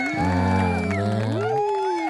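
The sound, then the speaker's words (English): A short crowd-cheering sound effect, loud and sustained for about two seconds, with voices holding bright whooping tones that swoop upward near the end. “There's people cheering for us.”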